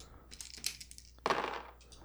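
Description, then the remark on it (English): Several quick, hard clicks and rattles as percentile dice (d100) are rolled across a tabletop during a game, ending in a brighter clatter burst before settling on 11; moderately quiet, with no talking. “What am I rolling? Just up and down. D100.”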